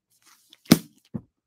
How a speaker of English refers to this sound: You know, I tore up a piece of paper to put in my book as a marker.